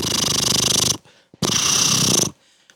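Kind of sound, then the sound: vocal imitation, voice imitating a jackhammer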